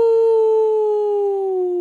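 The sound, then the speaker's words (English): A voice imitates howling wind with one loud, sustained hooting "oooo" that slides slowly downward in pitch for about two seconds, steady, with no other sounds. “They call them the Howling Caves.”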